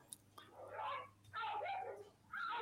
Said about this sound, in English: Without warning, the pit bull snaps and tries to bite down on Max. The homeowner desperately tries to keep Max out of the pit bull's jaws, even putting herself at risk of being bitten.